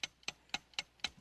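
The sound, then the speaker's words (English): A game clock ticks steadily as an overtime round is timed, five sharp clicks spaced about a quarter second apart, crisp with nothing else sounding. “Okay, start the clock now.”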